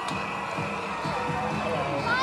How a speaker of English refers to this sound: Drag queens getting a lot of love from the people in the crowd. Lots of good music coming when the floats are going around. People are dancing, people are cheering. You can hear. It's getting louder, people are getting exciting.